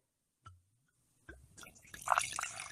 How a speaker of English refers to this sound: I fucked up the pour.